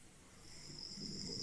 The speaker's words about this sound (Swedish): Ja, det gör han. Det låter som någon snarkar där bakom.